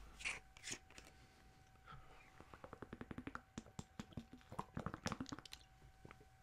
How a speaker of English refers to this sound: Let's have a quick drink here. We'll go for some water this time.